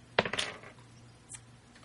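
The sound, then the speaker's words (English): A die clatters across a hard tabletop: a sharp first hit, a quick burst of rattling bounces, then a faint final tap a second later, against a quiet background; it lands on a 6. “Yeah, hit it and roll a dice for me.”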